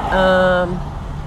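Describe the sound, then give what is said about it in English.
A steady low rumble of a car moving slowly in a line of traffic in Santa Barbara, heard from inside the vehicle while driving home from work at almost 9 o'clock at night, with a brief voiced hum over it in the first half-second. “Stuck in this line of weird, fucked up Santa Barbara traffic, but looks like it's moving now, finally.”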